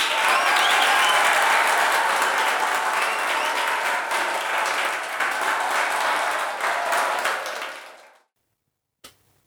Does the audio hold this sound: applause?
yes